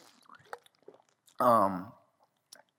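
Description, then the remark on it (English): A few soft wet mouth clicks and a quiet sip as someone takes a drink of water, then a loud voiced exhale like a satisfied 'ahh' lasting about half a second, and one last faint click. “And excuse me while I take a drink of water.”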